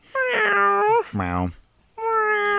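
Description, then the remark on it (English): Three drawn-out meows in a row, the middle one lower and arching, each loud and tonal with short gaps between; they sound like a person's voice imitating a cat. “Meow.”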